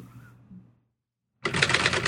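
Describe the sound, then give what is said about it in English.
Rapid, loud clatter of an old typewriter bursts in abruptly after a brief silence, keys striking in a dense, busy rhythm; a faint low hum precedes it. “The classic old typewriter.”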